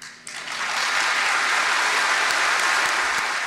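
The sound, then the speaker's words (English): A room full of people bursts into loud, sustained applause and cheering as a woman demands the resignation of Judge Kara Hudson, a dense wash of clapping that starts abruptly and holds steady for several seconds without any talking. “you can hear there, she demands resignation in a room full of cheers.”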